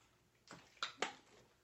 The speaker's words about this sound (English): Maybe I'll drink some water and it'll help me like clear my throat.